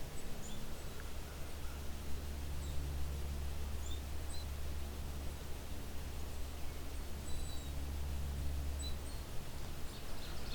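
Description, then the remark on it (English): Faint, high-pitched little squeaks of a black-capped chickadee come in brief, scattered bursts at irregular intervals over a steady low rumble and hiss of outdoor background noise. “And little squeaks.”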